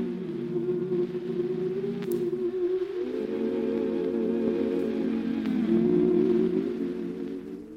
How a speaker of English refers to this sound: NBC Chimes on that Martin Lewis show.